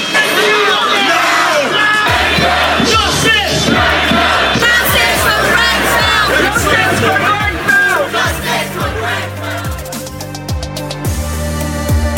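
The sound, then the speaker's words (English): Thousands of protesters marching in London, demanding justice and help for the victims of the Grenfell Tower fire, shout and chant together, voices overlapping in a dense, continuous roar with rhythmic pulses of yelling and cheering throughout. “Thousands of protesters have marched in London demanding justice”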